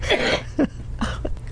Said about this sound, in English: I just coughed up a lung.